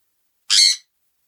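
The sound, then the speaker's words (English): A single sharp, shrill squawk from a sun conure parrot named Hey Boo Chan, loud, lasting about a third of a second and surrounded by silence. “He is a song conure parrot.”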